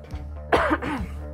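A person clears their throat in a couple of rough, raspy bursts, with a faint steady hum underneath and no talking.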